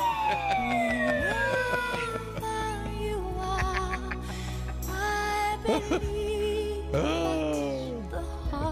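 A ship's whistle sounding the sinking alarm: loud, sustained wailing tones that slide downward in pitch and swell again several times, layered over a steady low rumble, with no voices.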